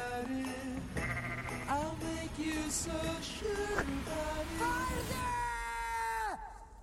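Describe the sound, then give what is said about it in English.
Several sheep or goats bleat in overlapping, wavering, loud cries, with a sustained shrill call near the end that drops off sharply, over a busy, noisy background. “She's yelling, "Go away to the mother sheep, goat, whatever."”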